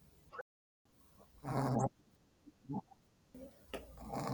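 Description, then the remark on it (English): A female dog snores with pig-like snorts and grunts: one long, loud rasping breath, then several shorter snuffling bursts at an uneven pace, with no one talking. “have you got a snoring dog? I do. I'm gonna leave that in the podcast because she makes pig like noises.”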